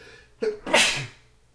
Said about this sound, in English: Hang on, I'm going to sneeze here. I'm sorry.